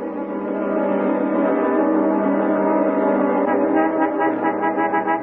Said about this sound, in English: You're honking at us, lady. How do you expect me to move my car with your truck in the way?